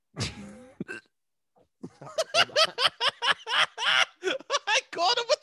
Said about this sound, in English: I caught him with the hiccup. I caught the baby boy.